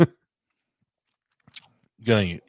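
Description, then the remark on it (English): Close-up chewing: a few soft, wet clicks and crunches in an otherwise quiet moment, bracketed by a brief vocal sound at the start and a short voiced murmur near the end. “I apologize for chewing in the mic.”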